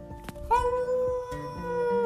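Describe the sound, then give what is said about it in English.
Dogs howl in long, steady, wavering tones that overlap, while a few short, low barks break in beneath them. The sound is fairly loud, with no talking. “Help us. Ruff, ruff, ruff. I hear them.”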